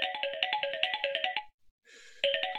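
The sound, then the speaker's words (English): A mobile phone ringtone for an incoming call chirps in a quick, repeating electronic pattern, loud, breaks off briefly, then starts ringing again. No voices are heard. “Oh, it's Chance again. Answer your damn phone.”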